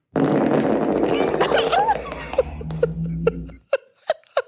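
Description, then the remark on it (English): A long, loud fart rumbles and sputters for about three seconds, then cuts off and gives way to a few short, sharp bursts like stifled laughter. “So we have Fart A.”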